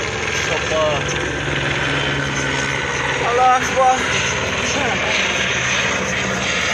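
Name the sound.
helicopter flying overhead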